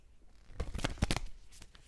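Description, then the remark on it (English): A quick riffle of playing cards being shuffled for a self-care card pull, a rapid burst of papery flutters and snaps lasting about a second, with no talking. “All right, here we go. Let me shuffle.”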